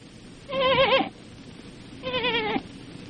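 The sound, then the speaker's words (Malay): A lost lamb that has strayed bleats twice, each a wavering, quavering cry lasting about half a second, with a short pause between them over faint background noise. “Anak doma yang jadi gola berjalan ia sesat.”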